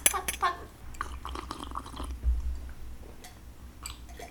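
Glasses clink sharply a couple of times, followed by quiet gulping and swallowing as a shot is drunk, with soft mouth sounds and a low background hum.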